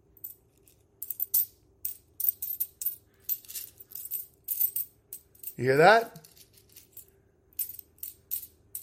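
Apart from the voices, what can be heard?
coins dropping and clinking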